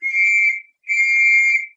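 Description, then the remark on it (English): Two loud, shrill whistle blasts, each lasting over half a second with a short pause between them. The tone is steady and piercing, with no voices or other sounds. “Blowed if it ain't that blessed whistle again, and another crowd a-pelting this way.”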